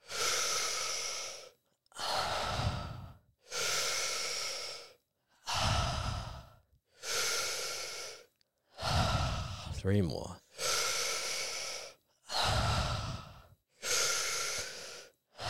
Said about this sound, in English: We're going to breathe in through the mouth now, 10 breaths. Big long breaths, keep going. Let's go, 7 more, keep going, out.